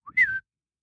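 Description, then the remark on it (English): A person whistles a quick, high-pitched call, imitating the high-pitched three-part whistle of the half-man 'otter men': a short soft note, then a louder, breathy tone that slides slightly downward before cutting off, with silence after. “So there's something that makes them a little more manlike, although their method of communication is a high-pitched three-part whistle.”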